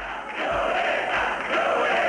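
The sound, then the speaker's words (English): A large crowd of supporters in Managua, Nicaragua, roars a rhythmic two-part chant of "Violeta, Violeta" in the morning as Violeta Chamorro declares victory. The chant is loud and continuous, with dull low thumps recurring about every second beneath the dense wall of voices. “The roaring chant of Violeta, Violeta in Managua this morning as Violeta Chamorro declares victory before her supporters.”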